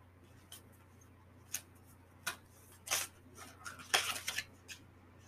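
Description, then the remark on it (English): Oracle cards are pulled from a deck, a scattered series of short, crisp swishes and flicks, with a faint steady hum underneath and no talking. “But then I just pulled out the two keys of treasure.”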